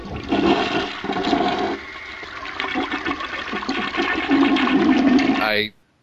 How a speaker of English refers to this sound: For our version of the show, I think I'm just going to insert a flush sound right here.